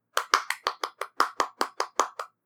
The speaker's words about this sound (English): Today we're talking about minute 163, which starts with a round of applause.